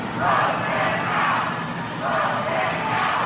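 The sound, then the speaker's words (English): A large crowd loudly boos and shouts at President Trump as he pays his respects to Justice Ruth Bader Ginsburg at the Supreme Court, the jeering swelling and dipping in sustained waves over a few seconds with a dense, outdoor roar of many voices. “As President Trump faces blowback for his comments, he was loudly booed as he paid his respects to Justice Ruth Bader Ginsburg at the Supreme Court today.”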